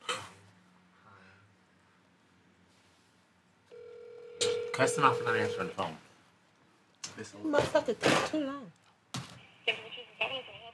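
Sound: telephone dialing and ringing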